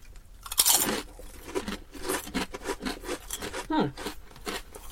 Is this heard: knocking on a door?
no